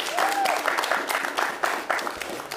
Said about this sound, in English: And yeah, round of applause for Kate.